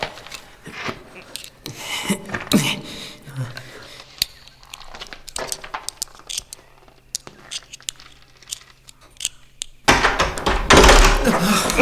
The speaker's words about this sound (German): Nur keine Aufregung. Das muss der Wind gewesen sein. Er hat die Tür zugeschlagen.